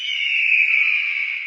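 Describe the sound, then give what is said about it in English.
A single long, piercing eagle screech holds steady and loud for about a second and a half, shrill, with no voices or other sounds around it. “And we heard the eagle screech for the first time.”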